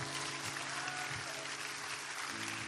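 A church audience claps together for Jesus in a steady, dense wash of applause that holds at an even level throughout, in an auditorium.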